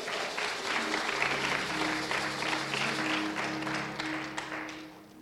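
A church audience claps together in a sustained hand clap of praise to God, dense and steady for several seconds, with a low organ-like tone humming underneath before the clapping gradually thins out.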